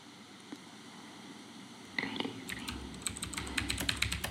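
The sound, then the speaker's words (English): Rapid, irregular typing on a computer keyboard starts partway through, a flurry of crisp key clicks over a low background hum, with no speech. “stop typing.”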